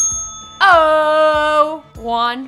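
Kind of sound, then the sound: signal or alarm, bell rung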